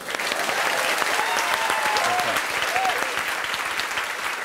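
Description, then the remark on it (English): A crowd applauds steadily, dense clapping holding at an even loudness for several seconds, with a few faint cheers or voices rising briefly within it. “Pause for laughter or applause.”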